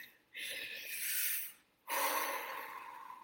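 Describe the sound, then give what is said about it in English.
A slow, deep inhale followed by a long exhale, clearly audible, two airy breath sounds separated by a brief pause with no talking, taken as a deep-breathing exercise. “And let's just start with taking a deep breath.”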